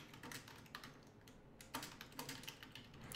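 Rapid, irregular clicking of keys on a computer keyboard, moderately loud, continuing steadily for a few seconds with short bursts and brief pauses, no voices.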